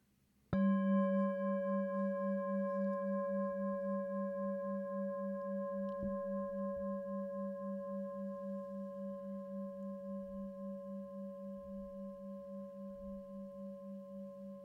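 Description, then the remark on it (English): A single struck meditation bell rings out alone, its low tone pulsing with a gentle wobble beneath bright overtones, then slowly fades while still sounding about fourteen seconds later. “and bring your attention to the sound of the bell as it moves through time.”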